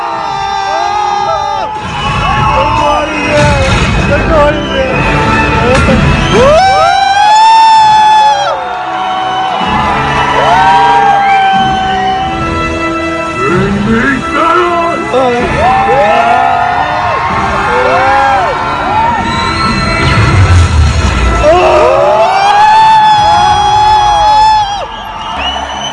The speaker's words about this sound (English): You know, and him and Groot and Rocket are running towards the bad guys, and you hear the cheering in the crowds, and they show from various places over the world.